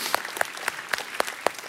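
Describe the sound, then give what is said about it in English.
Six sharp hand claps in a steady, even rhythm, close and fairly crisp against a faint hiss, with no voices. “Let's give a clap for that.”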